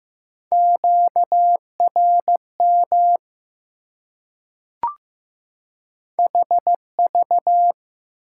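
Morse code beeps at 15 words per minute in a steady mid-pitched tone, short and long elements keyed in quick groups at a moderate pace, with a brief click during a pause midway. No voices.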